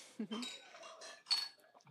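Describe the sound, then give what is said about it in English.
Glasses clink together in a toast to Stephen Gately, one bright ringing chime standing out clearly, with soft murmuring voices and shuffling around it. “But I think, speaking of Stephen Gately, can we all just have a little toast to Stephen Gately?”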